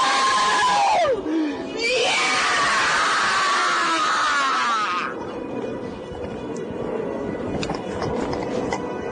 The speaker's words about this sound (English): Why are you screaming like that? Oh, just for fun.